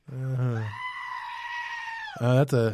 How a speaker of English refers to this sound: That is a goat scream, I think. or the dude being wrestled. That wasn't our outro. It's at either all. The dude being wrestled or the goat was what that was. It's a goat, dude.